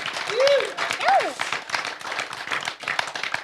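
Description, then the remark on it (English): An audience at a Western States 100 event applauds runner Jared Hazen with dense, steady clapping throughout, punctuated by two rising-and-falling whistles or whoops early on and scattered cheers. “Big round of applause for Jared Hazen before we get going.”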